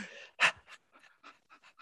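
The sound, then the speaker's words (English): A person pants like a dog as part of a tapping exercise: one loud, breathy huff followed by a quick series of softer, short panting breaths in an uneven rhythm, with no talking. “And now you're going to pant like a dog.”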